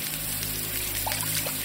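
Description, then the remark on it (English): Running water pours steadily as a person rinses dirt and grit from their hair, a continuous splashing hiss with small droplet-like spatters scattered through it and no voices. “I turn to face the water and hang my head, letting the curtain of hair flow while I thoroughly scratch and clean the rest of the dirt.”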